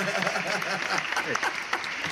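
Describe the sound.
A steady burst of applause, dense overlapping claps at an even loudness for about two seconds, with voices talking and laughing underneath.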